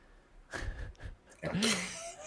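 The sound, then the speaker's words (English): A person gives a loud, drawn-out, exaggerated yawn: a breathy inhale followed by a voiced, groaning exhale that rises and falls in pitch. “Yawn.”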